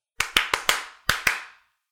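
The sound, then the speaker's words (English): Six sharp hand claps from a song, with no voices: four in quick, even succession, a short pause, then two more, each bright and snappy with a brief ringing tail. “That's the best part of the song. Or the claps.”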